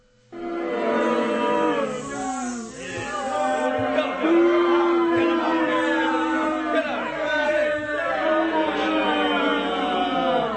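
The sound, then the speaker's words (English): A crowd boos loudly and continuously, many overlapping low, drawn-out voiced tones swelling and wavering for about ten seconds without a break. “so let's boo him, guys. He needs to be booed.”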